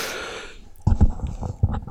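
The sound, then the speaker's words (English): A big yawn: a breathy, hissing intake that fades out, then a voiced, groaning stretch with uneven low bursts lasting about a second. “Oh, big yawn. Sorry about that, folks.”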